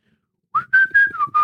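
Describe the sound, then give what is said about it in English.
A person whistles a short, wavering tune into a microphone from the side, a few sustained notes rising and dipping slightly, with faint breathy noise underneath. No one speaks. “Yes, I have tried to whistle into these mics. You have to do it from the side.”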